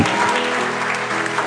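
An audience claps steadily during a sermon for a moment and a half, a dense, even patter of many hands with no pauses, fairly loud throughout and with no one speaking over it.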